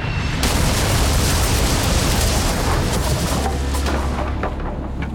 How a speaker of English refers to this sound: As the invading fleet attempted to escape, they headed up the east coast of England, still under attack from the English cannons.